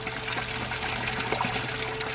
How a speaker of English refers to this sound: When they got the house pump fixed, the most lovely sound that morning was the sound of water going into our empty water tank.